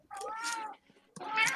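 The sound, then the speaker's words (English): A cat meows twice, two drawn-out, wavering cries separated by a short pause, the second rising slightly higher and more insistent than the first. “So, just cat noise.”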